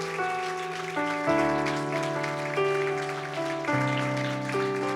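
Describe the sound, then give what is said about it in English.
A crowd claps steadily in a dense, continuous patter as a hand clap of praise to the Lord, mixed with sustained organ-like chords that shift every second or so. No one speaks. “Why don't you give the Lord one more great hand clap of praise?”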